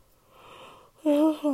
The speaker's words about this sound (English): Sorry, I'm yawning. But I get so antsy.